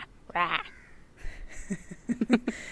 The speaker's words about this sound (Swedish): Nu kan vi inte undvika att påpeka att det hörs fågelljud där bakom dig. Vad är det för fågel? Nu är det ingen ibisfågel, det är bara en kråka, men den låter ungefär lika.